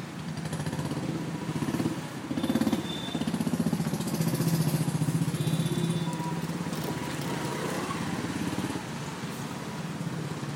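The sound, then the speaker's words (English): Steady city and highway traffic with some construction going on, engines rumbling and idling, a motorcycle-like engine rising and falling, and faint higher tones like horns or brakes over a continuous low drone. “So first off, we've got traffic and the highway. So let's listen to some traffic sounds first.”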